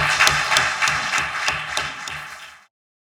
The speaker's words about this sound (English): Let's give a round of applause to our panelists.